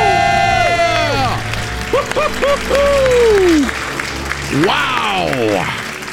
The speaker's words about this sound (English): Count it down. Let's hear a debt-free scream. Three, two, one. We're debt-free. Yeah.